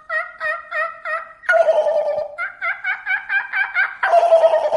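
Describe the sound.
A person imitates a wild turkey, alternating rapid rhythmic yelping clucks with two bursts of rattling, throaty gobbles, loud with no talking.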